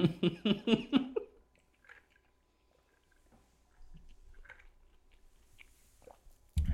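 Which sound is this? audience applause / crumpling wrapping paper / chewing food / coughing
chewing food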